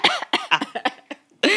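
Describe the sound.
A voice imitates soldiers hit by CS gas with a rapid series of harsh, hacking coughs, about eight short bursts in quick succession with a brief pause before a final loud cough, fairly loud.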